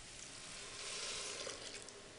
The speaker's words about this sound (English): I'm gonna hop back over here because I think that my lentils are now ready to receive their broth. So I'm gonna pour that in.